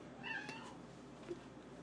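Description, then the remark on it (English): A cat gives one drawn-out, wavering meow with a plaintive rising-then-falling pitch, moderately loud, followed by a short faint chirp against a quiet background. “I've ruined all of the cat's good times. I'm sorry, kitty. Woe is cat.”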